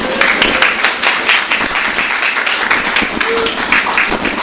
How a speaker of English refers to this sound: Let us please give her a warm round of applause.